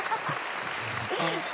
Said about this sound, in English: Oh, I love the claps.